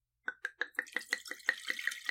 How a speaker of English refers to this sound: I know I haven't done one of these in a while, but I'm going to get into this one and pour my glass so we can taste them.